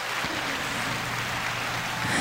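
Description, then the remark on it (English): Recorded applause: dense, steady clapping from a crowd, a continuous wash of many hands that holds at an even level and swells slightly at the very end, with no voices over it. “It's crazy that they all stopped clapping at the same time.”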